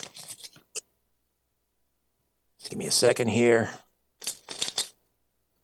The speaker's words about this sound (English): I do have a sealed envelope. It arrived today by registered mail from the management of Saga 960. So I'm going to open this.